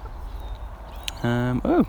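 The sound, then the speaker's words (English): Two hen calls in the morning over a low outdoor rumble: a sustained, steady cluck-like note followed by a short rising-and-falling squawk, with nothing else prominent around them. “Hen action, hens in the morning.”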